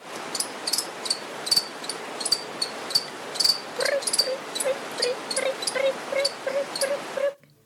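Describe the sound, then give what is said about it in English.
A cricket chirps by stridulation, rubbing one body part across another, in quick, steady bursts of high, buzzy pulses over a soft background hiss, joined midway by a faint, repeated lower whine until the sound cuts off. “So that is called stridulation, and it is the sound made by rubbing one body part across another, and it's the same way that a musician produces sounds on a violin.”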